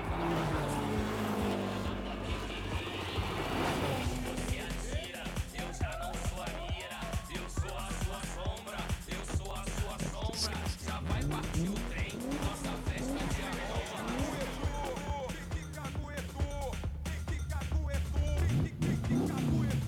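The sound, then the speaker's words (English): Race cars rev loudly and continuously, engines roaring with sharp tire squeals cutting through, while indistinct voices blend into the dense, nonstop noise. “You guys mock up a track. O'Connor. It's nasty. Let's go get some cars.”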